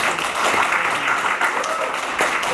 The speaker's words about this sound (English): I'd like to give Michael another round of applause.